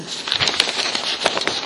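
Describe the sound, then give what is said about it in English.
Papers being shuffled, a steady dry rustle with quick crisp crackles scattered throughout, fairly loud and with no voices over it. “Somebody's shuffling me papers.”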